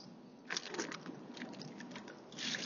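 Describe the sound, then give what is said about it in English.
Mouth noises of someone taking a drink of water: soft wet clicks and smacks spread over a couple of seconds, with a gulp and no talking. “I need to have a drink of water because I'm dying here.”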